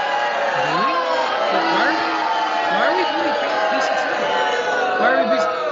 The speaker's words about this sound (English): I know why we're booing